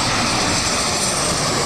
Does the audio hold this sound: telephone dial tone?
no